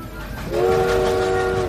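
A train rumbles along as a loud, steady horn blast sounds over the rolling noise, holding for over a second before easing off.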